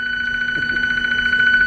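A ballpark's video replay phone rings with a steady electronic tone that sounds without a break for the whole moment, a bright, sustained tone at fairly clear volume with faint background noise and no one talking.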